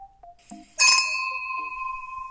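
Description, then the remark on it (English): Glasses clink together once in a toast, a bright strike followed by a clear ringing tone that hangs and slowly fades. No one speaks. “Grab a glass, sit back and relax. Cheers.”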